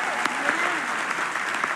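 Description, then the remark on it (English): A church audience clapping their hands in a dense, steady wash of applause, with individual claps popping out here and there and faint voices mixed underneath. “Can we clap our hands and say amen together?”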